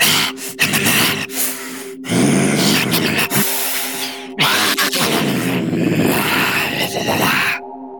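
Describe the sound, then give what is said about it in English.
A voice imitates a monster tearing into a chair, with loud, raspy growls and grunts broken by sharp gasping breaths and harsh, drill-like tearing noises over about eight seconds. “I've been working a lot on my monster sound effects.”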